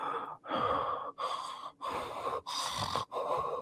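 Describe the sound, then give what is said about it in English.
A voice imitates Michael's heavy, raspy breathing as he stands in the room after Dr. Loomis shoots him, with six loud breaths in and out in a steady rhythm, each separated by a brief pause. “And then Michael stands in the room breathing.”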